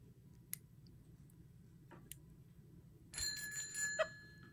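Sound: phone ringing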